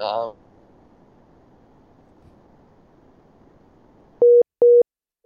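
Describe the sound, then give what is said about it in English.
A remote call line to a person in the UK drops out: a brief burst at the start, then faint line hiss, followed by two loud, evenly spaced electronic beeps of a disconnect tone. “Oh, we've lost them.”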